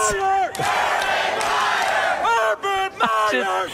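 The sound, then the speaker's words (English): A hype man lets out several loud, drawn-out yells to hype up the audience, each swooping downward in pitch, over a steady roar of crowd noise that swells between the shouts. “I wish we could bring that guy, whoever that guy is, that's yelling everywhere.”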